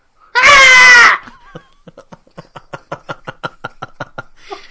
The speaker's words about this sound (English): I'll probably, edit that out and put in the shrieking goat from all those videos.